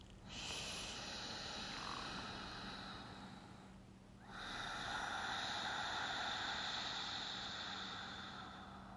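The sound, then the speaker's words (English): Two long breaths with a soft, throaty snore-like rasp, made by releasing air through the throat with the mouth closed and the tongue on the roof of the mouth, each lasting about four seconds and separated by a brief pause. No one speaks. “When you release the air the same way with everything in the same place, it sounds like a baby snoring when done correctly.”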